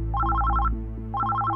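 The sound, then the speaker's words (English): A telephone at a desk in the FBI offices on Wilshire Boulevard, Los Angeles, rings with a bright, warbling electronic trill, two bursts separated by a brief pause, fairly loud, over a steady low hum. “He was just closing up a case he'd been working on for months when the phone rang.”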